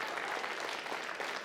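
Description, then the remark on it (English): An audience applauds and cheers, a steady wash of dense clapping with a bright, crackling texture that holds at an even level throughout. “It's funny you're cheering about that.”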